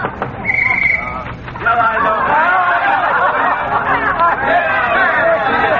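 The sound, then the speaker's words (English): A lively party crowd at an old man's wing-ding chatters over one another in an overlapping babble of many voices, with bits of laughter, steady and fairly loud throughout. “Oh, sounds like the old duffer's throwing a wing-ding in there.”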